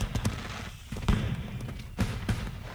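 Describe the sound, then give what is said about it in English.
A fireworks sound effect accompanying a stop-motion video of flowers opening: a string of pops and bangs, irregularly spaced booms with crackly tails over a dull low rumble, moderately loud, with no voices. “Yeah, the sound is fireworks, and then the flowers open up to the sound.”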